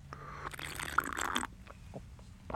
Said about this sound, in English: Like, why is my voice, here, I need a slurp.